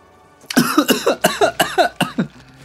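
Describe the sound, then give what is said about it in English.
A rapid fit of about seven harsh coughs in close succession, loud, each burst sharp and raspy, trailing off into a faint wheezy breath at the end; the coughing is caused by smoke. “That's smoke making you cough.”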